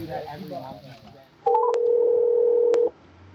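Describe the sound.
Muffled voices give way to a single steady electronic phone tone lasting over a second, clear, with a couple of faint clicks as a call connects and rings.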